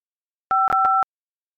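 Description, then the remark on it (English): A brief electronic telephone-line tone, two steady pitches sounding together for about half a second, with a few sharp clicks breaking through it, on a call to the Hyatt House San Ramon hotel. Silence around it. “I hear the beep beep beep.”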